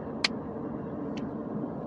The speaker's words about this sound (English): I know y'all heard that. That's my car. I have gremlins in my car, and that's one of the things I think of when something like that happens. I know it's been happening, usually not when my AC is off